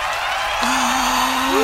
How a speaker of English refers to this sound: We got cheering from over the here. Air horn. We got it. It's happening. It's post-production. Yeah. It's going on. Yeah, cool. We got full Hollywood Bowl cheering going on right now.